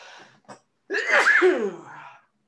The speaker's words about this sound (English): I'm pretty sure I need to sneeze for one sec. Hold on.